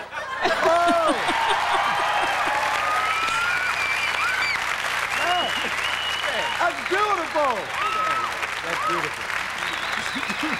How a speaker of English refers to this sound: I couldn't hear over the applause, the standing ovation from the crowd.